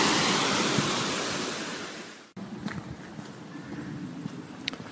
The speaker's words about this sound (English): obviously the sound of the river floating past